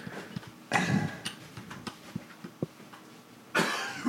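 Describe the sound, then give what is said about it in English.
Two harsh coughs from a man a few seconds apart, with faint ticking and small knocks in the quiet gap between them. “He's fighting off that, you know, that cough.”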